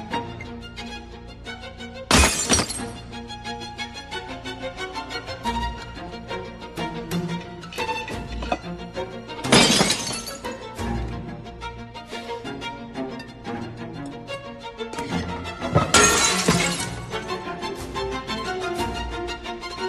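Three loud bursts of shattering glass from a dropped glass art piece crash out at intervals over a busy orchestral violin score, each smash bright and sudden before the music carries on.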